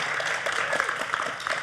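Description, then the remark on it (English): A live studio audience at the Creation Museum claps together in a dense, steady patter of many overlapping hand claps that holds at a fairly even loudness throughout. “We've got a live studio audience with us here at the Creation Museum. You guys can clap and let everybody know you're here.”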